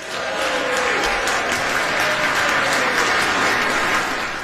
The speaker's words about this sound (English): And the inexplicably socially distanced, fully vaccinated members of the House applaud wildly.